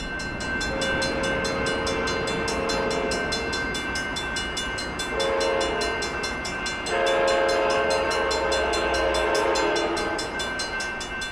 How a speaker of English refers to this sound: the United States also, as trains come in and go out of stations, they have to ring the bell. Though I'm sure it's not a bell like they used to be, but more an electronic bell.